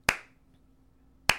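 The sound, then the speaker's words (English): Two sharp hand claps spaced more than a second apart, a slow, deliberate clapping demonstrating applause at the end of a musical play, with quiet between the hits and no voices. “but the overall theme of it and the way that it ends, I would have felt, I mean, I would have clapped like...”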